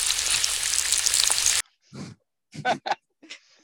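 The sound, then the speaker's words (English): Loud, dense crackling sizzle of an egg frying in hot oil for about a second and a half, cutting off abruptly, followed by a few short grunting, snorting sounds. “Can we put the frying egg in?”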